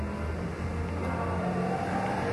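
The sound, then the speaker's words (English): A car engine revs steadily and loudly, a continuous low mechanical roar with rising harmonic tones, filling the whole moment without any voices, at the Mount Panorama circuit in Bathurst. “Broken car? Well, that'll be it.”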